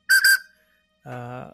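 Two quick, shrill, loud blasts of the Big Thunder Mountain theme park mine train steam whistle, followed after a pause by a brief low, humming voice-like tone.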